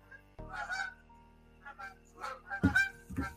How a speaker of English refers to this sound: Fellas, I'm under fire by the geese, man. We're under attack.